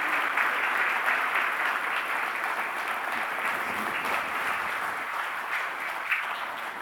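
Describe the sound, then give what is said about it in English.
A crowd applauds in appreciation of a woman who has just spoken, many hands clapping in a dense, even wash of sound that holds at a fairly constant level for several seconds without any voices. “Can you guys give her a hand clap of appreciation?”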